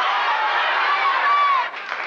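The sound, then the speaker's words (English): A game show studio audience cheers and yells in a loud, dense roar, many voices shouting over one another at once to tell a contestant answers, steady for about two seconds before dipping slightly near the end. “And so the crowd's cheering and yelling and telling her.”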